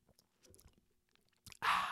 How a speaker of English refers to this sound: Excuse me, I'm going to take a little sip here.